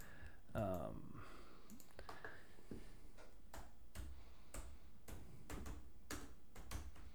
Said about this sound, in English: Could you hit the keyboard any harder?